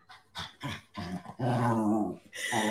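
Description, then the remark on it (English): A dog growls and grumbles in the background, a few short throaty bursts building into a long, rumbling growl, then another snarl starting at the end. No one speaks. “Her dog in the back like, man, bitch, shut up.”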